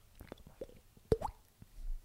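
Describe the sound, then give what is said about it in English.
A voice makes a quick mouth-pop imitation of people jumping into water, a single sharp burst amid soft breathy clicks, fairly quiet. “That's us jumping in the water.”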